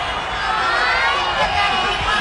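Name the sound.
crowd applause and cheering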